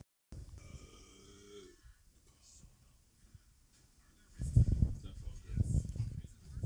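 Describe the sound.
A drawn-out, throaty burp rumbles for over a second, somewhat distant from the microphone, followed after a quiet pause by louder, muffled voices talking.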